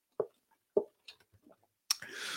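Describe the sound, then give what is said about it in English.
Two sharp wet clicks from a bottle of Icelandic Glacial water, followed by a few soft gulping swallows, then a sudden sharp burst that trails into a steady breathy hiss. “Excuse me while I take a quick sip of my, what is this? Icelandic glacial water.”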